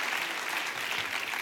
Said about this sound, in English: Well, come on, clap like you don't want me to stay there very long. Just thank you.